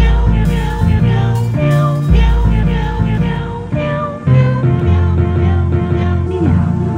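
Cat-like meows ring out over a loud, steady musical track with heavy bass, the wavering cries blending into the sustained synth tones throughout.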